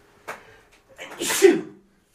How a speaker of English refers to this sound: excuse me while I sneeze.